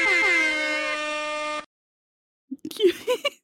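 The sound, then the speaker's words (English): A single loud, blaring air horn blast holds steady for over a second and cuts off abruptly; after a short silence, a voice briefly speaks. “And like a little air horns?”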